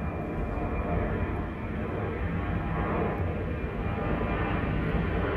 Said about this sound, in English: As that plane flew by, oh my god, as that plane flew by, I felt like the wind pick up and I felt like just this freshness coming out and about.